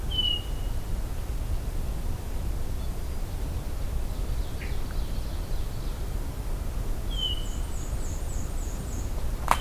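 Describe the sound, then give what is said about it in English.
Faint crossbill calls pass overhead: two sharp, short call notes about seven seconds apart, with a few softer chips between, over a steady background hiss. “Yeah, I've got some crossbills.”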